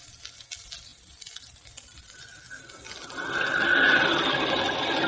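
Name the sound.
rain pattering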